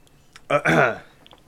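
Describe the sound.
A single loud sneeze: a short catch followed by a forceful, voiced burst lasting about half a second, then quiet with a couple of faint clicks.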